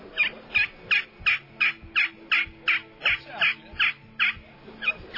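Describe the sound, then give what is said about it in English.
A wooden turkey friction call scratches out a quick, steady series of about fourteen raspy yelps, each short and evenly spaced, with no talking over them. “And, you know, we got these little friction calls here. This wood calls that's pretty simple.”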